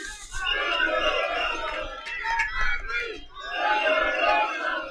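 A large arena crowd at a wrestling match, cheering Thunder Rosa, roars and cheers loudly, swelling in sustained waves of shouting with a brief dip in the middle before surging again.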